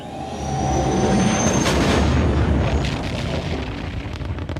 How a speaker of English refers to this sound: Han graspeth quick the console in his hand, then suddenly the ship is bathed in light. With roar of engine, noise profound and grand, the great Millennium Falcon takes her flight.